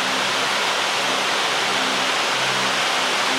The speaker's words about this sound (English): It's raining very heavily.